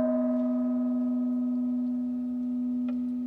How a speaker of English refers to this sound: So from now on, as you see a gong, you may remember me talking about this. This gong is supposed to make this sound.